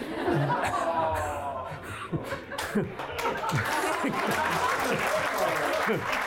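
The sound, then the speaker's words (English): A panel discussion audience applauds with steady, dense clapping throughout, mixed with scattered chuckles and murmuring voices, holding at a fairly loud, even level for several seconds. “I'll let the applause get out of the way because I know I won't get any.”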